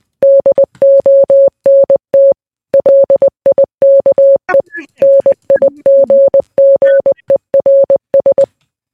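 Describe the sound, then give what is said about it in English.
Morse code beeps: a single steady-pitched tone keyed on and off in quick short and longer pulses, loud, running for several seconds with one brief pause and faint background noise midway. “This is for anyone who understands Morse code.”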